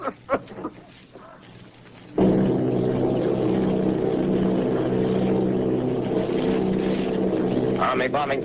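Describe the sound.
The engines of Army bombers, eight of them, off Bayonne, New Jersey, drone loudly and steadily, a dense, continuous roar that cuts in abruptly after a couple of seconds of muffled voices and holds to the end.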